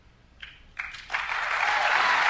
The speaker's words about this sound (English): They're applauding.